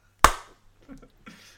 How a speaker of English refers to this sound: Okay, then clap in three. I was going to clap one.